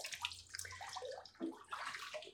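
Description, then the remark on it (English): Water sloshes and splashes in irregular surges as someone rises and climbs out of an ice bath after four minutes in it, with bright, gurgling bursts and no talking. “I'm at 4 minutes, so I'm gonna stand up and get out of this thing before I turn into an ice cube.”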